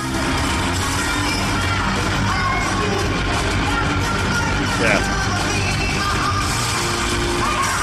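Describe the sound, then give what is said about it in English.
A large concert crowd sings along loudly and cheers in a dense, unbroken roar that holds steady throughout, with scattered yells and one brief spoken word over the top. “Yeah, let the crowd sing.”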